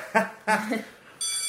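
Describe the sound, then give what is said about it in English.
A theatre bell starts ringing partway through, a steady, high, buzzing electric ring that holds on without a break. Brief voiced sounds come just before it. “Oh, that's the theatre bell.”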